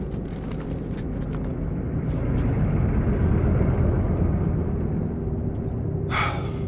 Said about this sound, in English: They're gone. Man, that fucking truck. It's been hounding us ever since we got in this damn...